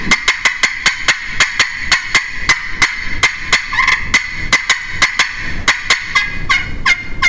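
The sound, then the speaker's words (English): Rapid, sharp turkey cutting notes from a hand call imitating an excited hen turkey, a steady string of loud clucks about four per second, clear with no talking. “They cut with real turkey rhythm like you're doing.”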